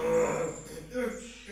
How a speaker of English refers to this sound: His face is turning red. I don't think that's healthy. Really grunting.